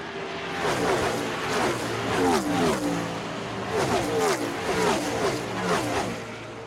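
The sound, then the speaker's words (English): Race car engines roar and rev continuously, their pitch repeatedly climbing and dropping as cars accelerate and speed past, loud and steady throughout with no clear talk. “Yeah, those cars go fast”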